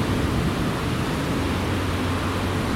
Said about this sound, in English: It's pouring rain, but it doesn't sound like it. It just sounds like hissy noises.